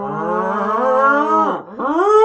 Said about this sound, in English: That was a cow getting raped.